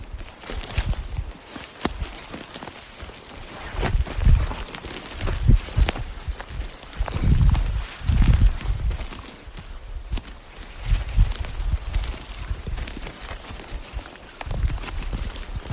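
Hooves thud and clop irregularly across soft ground, several horses shuffling and stepping at an uneven pace, with occasional faint bird calls in the background.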